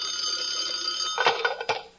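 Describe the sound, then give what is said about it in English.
An old-fashioned telephone bell rings with a bright, metallic trill, then breaks into a few sharp clanging strikes before fading off. Fairly loud, with no voices. “Suddenly the phone rings.”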